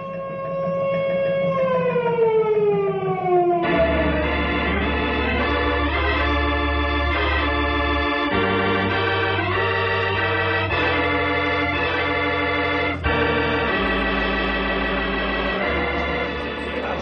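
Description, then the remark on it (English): A loud wailing disaster alarm siren, sounded as a tornado heads down the valley, its pitch sliding downward at first, then gives way to sustained, blaring layered tones over a deep low drone, with no voices. “Henry, sound the disaster alarm.”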